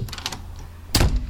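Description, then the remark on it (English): A studio door slams shut with one heavy, booming thud, preceded by a few faint rattling clicks from the handle or latch. No one speaks. “Slamming a studio door without due care and attention.”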